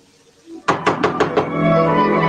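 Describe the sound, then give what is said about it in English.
Five loud, heavy bangs on a wooden door, a man pounding on a lady's door, in a quick, even rhythm, followed by a steady sustained sound that carries on after the pounding stops. “Why, Prince, banging on a lady's door”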